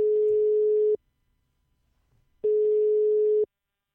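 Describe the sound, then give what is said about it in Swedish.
Two loud, steady telephone line tones, each lasting about a second, separated by a short silent pause, like a call ringing through before anyone answers. No one speaks. “Och jag satt i telefon med en kändis tidigare idag.”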